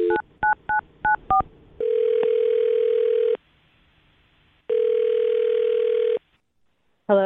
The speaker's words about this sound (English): Okay, I'm dialing this phone number right now